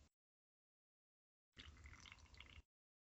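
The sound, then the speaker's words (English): A single wet, bubbly slurp of a drink lasting about a second, fairly loud and gurgling, heard on its own after a stretch of silence. “We could hear it through the headphones. I love it. Oh, good Lord. Slurp and slurp.”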